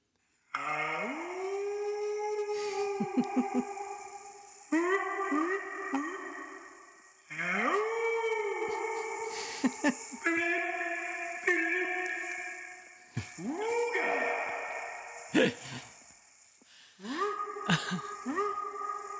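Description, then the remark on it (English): Gliding, wavering tonal notes come in several sustained phrases, each smearing and ringing out with heavy reverberation, recorded inside an empty house under construction, after the walls were put in, with vinyl flooring and no carpet. “So as you can hear, there's quite a bit of reverb there.”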